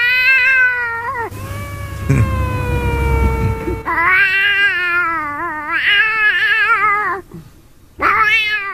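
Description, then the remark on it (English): A man's voice imitates a cat to his own cat, in a clip from Instagram, producing a series of loud, drawn-out wavering meows and yowls, one long sustained wail followed by several shorter, rising cries. “Speaking of cats, this guy on Instagram decided to do his impression of a cat to his own cat, and it confused his cat.”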